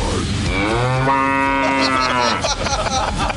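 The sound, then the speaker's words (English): A loud, drawn-out moo-like bass guitar tone swells and bends in pitch for about two seconds, sounding just like a cow lowing, followed by a brief clatter of busier sound. “That's a bass. He stepped on a cow.”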